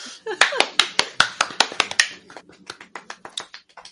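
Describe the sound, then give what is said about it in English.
A few people clap together in quick, sharp bursts, loud at first and then thinning out into softer, scattered claps as the applause fades. “Everybody clap.”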